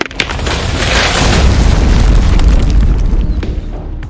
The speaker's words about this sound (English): And you hear a big avalanche from the side of the cliff fall.